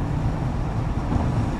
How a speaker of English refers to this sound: So when you hear a little bit of hissing in the background, that's because I turned on the air conditioning in the car, which I'm going to do right now.